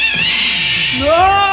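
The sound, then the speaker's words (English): A loud cat scream, harsh and wailing, with rising and falling harmonic tones that swell and bend over about a second and a half, no voices around it. “A few slow-paced footsteps are heard, and then another blood-curdling cat scream.”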